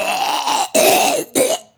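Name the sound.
cough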